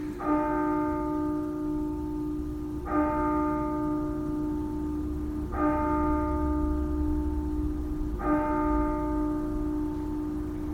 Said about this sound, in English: I was waiting for the bell. There it is. I think you all know I have a hard time preaching while the bell's going, so okay, we'll just let it ring.